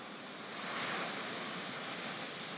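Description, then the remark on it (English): Gentle ocean surf washes steadily onto a sandy shore, a soft continuous hiss of small waves coming up and down, with a slight swell in loudness partway through, heard alone without voices. “And you get to the shore where the ocean meets the sand, and you see little waves coming up and down, up and down.”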